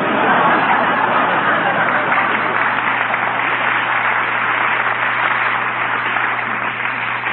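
A large, impatient crowd murmurs and chatters continuously, a dense, steady wall of overlapping voices with no single speaker standing out, holding the same fairly loud level throughout.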